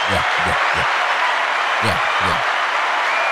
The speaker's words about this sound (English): Clap for me, man. Clap it up.